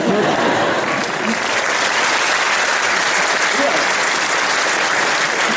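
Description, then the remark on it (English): A crowd bursts into sustained applause, dense steady clapping from many hands at a loud, even level for several seconds. “Allah Azza wa Jalla in the Quran, yeah, you can clap, it's okay.”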